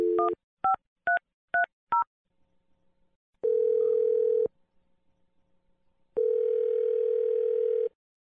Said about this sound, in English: Okay, I'm gonna dial the phone number right now. Here we go.